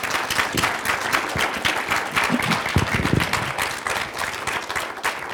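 A round of applause from a group, a dense, steady wash of many hands clapping at once, loud and sustained for several seconds with no voices standing out.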